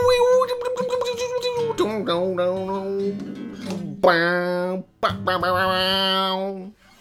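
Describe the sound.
A voice mimics an electric guitar solo from a 1990s song, singing rapid plucked notes that give way to long, wailing sustained tones with bending pitch and a buzzy, distorted edge, fairly loud throughout.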